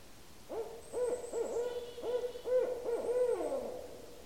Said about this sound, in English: That, of course, is Strix Varia, the barred owl. I'll play it again. See if you can hear it saying, "Who cooks for you? Who cooks for you all?"